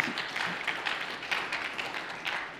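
A church audience at Linworth applauding during a sermon: a crowd of people clapping together, a steady dense patter of many hands at moderate volume, with no voices over it.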